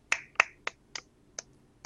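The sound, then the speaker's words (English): A brief round of applause from just one person: six sharp, crisp claps in a steady, unhurried rhythm, the first two loudest and the rest fading slightly. No one speaks. “That was the first applause I've gotten in years.”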